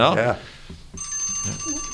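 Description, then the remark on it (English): A short burst of voice gives way to a steady, continuous electronic buzzer tone that starts abruptly and holds for about a second, fairly loud, with faint talking underneath. “We got a buzzer.”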